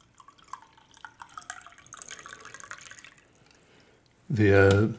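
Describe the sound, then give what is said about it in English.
Trickling liquid with small drips and splashes as coffee is poured into a cup, lasting a few seconds before a loud voice abruptly cuts in at the end. “I think I have, let me pour the rest of my, let me take a big sip.”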